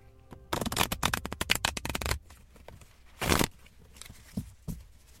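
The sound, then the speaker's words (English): A deck of cards is shuffled before a card is pulled, a fast burst of crisp riffling flutter lasting over a second, followed by a brief snap and a few soft card handling taps. “My shuffling skills come in handy from cribbage.”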